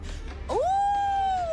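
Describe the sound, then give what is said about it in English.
A person imitates a wolf howl: one voiced note that swoops upward, then holds steady before starting to drop at the end, with no talking around it. “And a wolf?”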